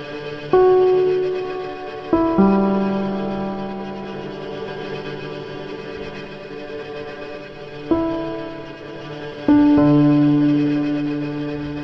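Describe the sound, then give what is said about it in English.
A brooding film score: a handful of heavy, low piano notes struck slowly, each ringing out with a long echoing decay over a sustained, tense string drone, with no voices. “As the breakup is realized, the score steps in with tension on strings and downbeat piano, following Mark as he shuffles through the lawns of Harvard.”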